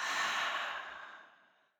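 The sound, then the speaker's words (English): A single long, breathy exhale, breathing out after a deep breath in, a soft airy rush that starts full and gradually fades away over about two seconds, with no talking. “So taking a deep breath in, thinking of that one thing, and breathing out.”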